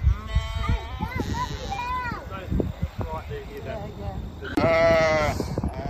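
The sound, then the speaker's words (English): Several sheep bleat in wavering, overlapping calls at feeding time, ending with one long, loud bleat near the end, with a person's voice and outdoor rustling mixed in. “Oh, sheepies. Look.”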